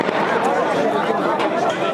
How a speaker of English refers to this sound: Up the road, they're now controlling the crowds of people trying to reach the British position. Sometimes they fire into the air to make people stop.